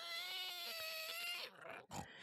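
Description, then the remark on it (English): A pig lets out a long, loud, steady squeal, then breaks into a few short, rough grunts and snorts as pigs are being fed from boxes of food, with no talking. “The pigs liked peaches and drumsticks and old chow mein, anything a person might like, and FM fed them mostly with grocery store cast-offs.”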